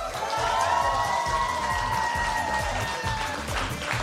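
An audience in a room cheers and applauds after a talk about a song, with dense, steady clapping and rising whoops carrying on loudly for several seconds without pause.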